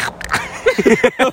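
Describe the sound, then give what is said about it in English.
A person imitates Donald Duck's quacking voice in a quick run of raspy, garbled syllable bursts, fairly loud, with short breathy sounds before it. “Can you do your best impression of Donald Duck?”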